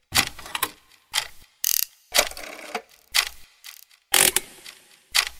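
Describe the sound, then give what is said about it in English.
A busy run of workshop noises in a barn as a boy builds a machine: hammering, drilling and banging in a quick, uneven series of sharp mechanical bursts, some clanking, some whirring, with brief pauses between and no voices. “He hammered and drilled, he programmed and soldered, he banged around and fiddled around, all while laughing maniacally to himself.”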